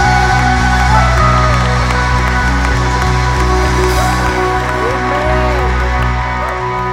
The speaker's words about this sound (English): And all God's people shouting out, come on, church!